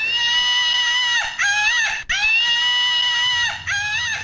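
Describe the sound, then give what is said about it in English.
A monkey screams loudly and shrilly in a string of long, wavering calls with brief breaks between them, filling the whole clip with no talking. “It sounds like there are monkeys in here.”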